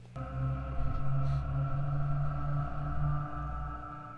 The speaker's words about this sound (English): It's going to make a noise, and it's going to, which spirits or demons or anything are supposed to be able to talk through that white noise.